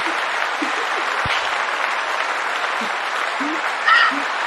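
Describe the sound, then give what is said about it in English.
A show audience claps steadily for several seconds to welcome a guest, a dense, even wash of many hands, with a brief high cheer or whoop rising over it near the end. “And okay, come on, clap.”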